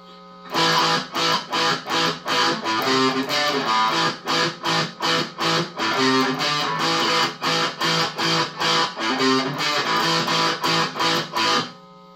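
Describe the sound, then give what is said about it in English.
A distorted electric guitar plays a choppy, repeating riff of short, punchy full A chords with a little fill, in a steady rhythm, loud, with brief gaps between stabs and no voices. “Now let's get into this other riff. Which distortion on.”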